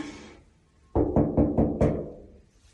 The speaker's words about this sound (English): I think this is her door. So let's find out. Let's knock, shall we? Let's knock.